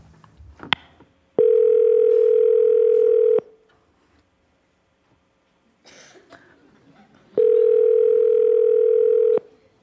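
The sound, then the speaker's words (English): Two long, steady electronic ringback tones sound on an outgoing phone call to the caller's mom, each about two seconds, separated by a pause with faint rustling and a soft chuckle. “Answer the phone.”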